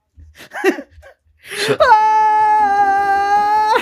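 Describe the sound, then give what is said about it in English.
A voice imitates a corpse screaming in pain: a few breathy, strained vocal bursts, then a loud, sustained, high-pitched wail held steadily for about two seconds. “The chorus can, the whatever corpse they put the hat on just starts screaming in pain.”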